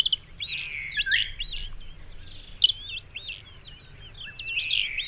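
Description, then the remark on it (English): Vulturine guineafowl call in a steady stream of shrill, rising and falling chirps that overlap one another, clear, over a low rumble of outdoor background noise. “What is it about vulturine guinea fowl that led to the evolution of this social system that resembles that of primates?”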